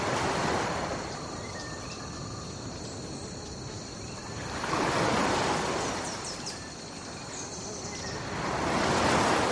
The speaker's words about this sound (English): And the sounds of the waves lapping on the shore are every bit as relaxing as the real thing.